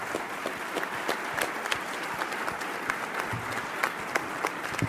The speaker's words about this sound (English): Gavin, if you would stand up here, please. Let's give Gavin Herbert a big round of applause.